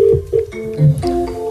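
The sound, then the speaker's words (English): An outgoing phone call rings through the line: steady electronic tones that shift pitch a couple of times, fairly loud, with no one talking, as a singer calls a fan to thank her for downloading his new single. “Come on, Lily, answer the phone to me.”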